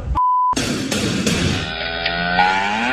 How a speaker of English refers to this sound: It's kind of funny that we bleeped mother. it was released that way. I can't find an unedited version of that.